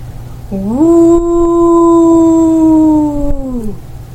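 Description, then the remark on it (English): A single low, deep howl, given as a welcoming howl at the start of a game, swells up in pitch, holds a long steady note for about three seconds, then sinks and fades, heard alone over a faint low rumble. “And you do hear this low, deep howl that kind of comes running through, and you all recognize that as somebody on the approach.”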